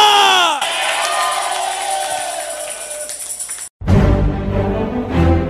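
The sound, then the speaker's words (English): An audience erupts in loud, sustained shouting and cheering in praise of God, a dense wall of voices that cuts off abruptly, followed by a shift into more voices and music-like tones. “I don't know if you are one of them, but in case you are one of them, may you shout for it. May you praise God for it. May you clap for it. Somebody shout here.”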